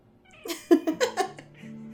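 A cat meows in a quick run of four or five short, bright calls, then the sound settles into a low, steady hum as the meowing stops.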